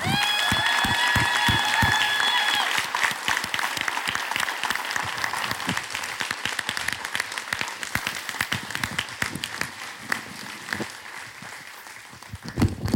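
A crowd applauds steadily for about thirteen seconds, a dense wash of many hands clapping. A high, sustained whistle-like tone rides over it at the start before the clapping thins slightly.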